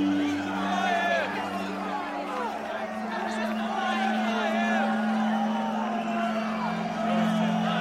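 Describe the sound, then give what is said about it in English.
A large mob shouts and clamors before Pilate in a dense, continuous roar of overlapping voices and chants, with rising yells and whoops breaking through a steady low hum for the whole stretch. “Before long, mobs of people were shouting.”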